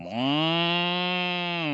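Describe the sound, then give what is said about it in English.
A man's voice imitates a dairy cow's moo, one sustained, steady low bellow lasting under two seconds, fairly loud, with no other sounds around it. “That's my dairy cow.”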